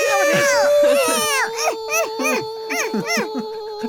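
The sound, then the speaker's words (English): A mandrake from a Harry Potter parody screams in a run of shrill, wavering, baby-like wails, each cry rising and falling in pitch over a steady sustained tone, loud and continuous throughout. “Why is the cock kind of screaming?”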